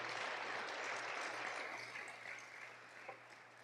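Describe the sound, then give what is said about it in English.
An audience applauds as a clap offering to God, a dense, steady wash of many hands clapping that holds for a few seconds and then gradually thins and softens toward the end, with no voices. “Yes, let's give a clap offering to the Lord.”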